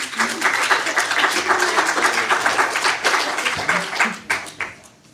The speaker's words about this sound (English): Ladies and gentlemen, your panel. That's your cue to clap.